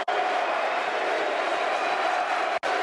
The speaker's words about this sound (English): A hail of tennis balls. Applause from the Millwall fans. Applause from the Millwall fans for that show.